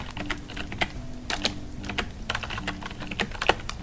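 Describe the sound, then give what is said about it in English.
Typing on a computer keyboard while booking a hotel check-in: a quick, uneven run of soft, crisp key clicks, with a few sharper taps, over a low steady hum. No one speaks. “ASMR Mahogany Lodge Hotel Check In (typing, crackling fire)”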